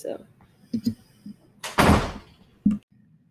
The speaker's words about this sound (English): Preston came out. Opened the door.